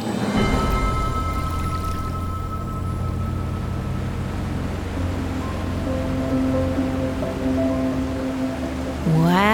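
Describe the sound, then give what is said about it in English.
Waterfalls pour steadily into Toba Inlet, a glacier-fed inlet with jade-green water, a continuous broad rushing roar that holds level throughout, with a low droning hum beneath it and a brief rising tone at the very end. “I wonder how tall those waterfalls are.”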